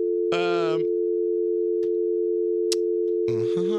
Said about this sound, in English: Fucking busy. Answer the phone. How can it be busy all the time?